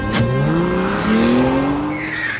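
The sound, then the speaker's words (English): Car tires screech loudly as a car skids to a stop, a sustained squealing whine over engine rumble lasting a couple of seconds, intense, with no talking. “As soon as we got outside the gates, a car screeched to a stop in front of us.”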